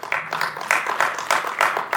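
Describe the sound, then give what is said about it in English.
An audience claps steadily in answer to a poll on whether they have used the MVVM pattern, a dense patter of many hands with a loose, repeating swell of brighter bursts, moderately loud, with no talking over it. “How many of you, by clapping, by applause, have used the MVVM pattern?”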